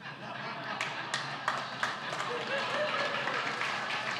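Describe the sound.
A church audience applauds a speaker one morning, a dense, steady patter of many hands clapping at once, with a few sharper individual claps standing out early on and voices murmuring underneath.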